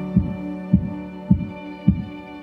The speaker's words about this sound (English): Joseph listens to the sound of his heart beating hard in his chest